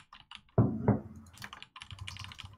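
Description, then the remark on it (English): Rapid typing on a computer keyboard while posting a tweet, a burst of clicky keystrokes with two heavier, louder thumps partway through, likely the spacebar or enter key, then more quick tapping. No one speaks. “Tweeting it out right now.”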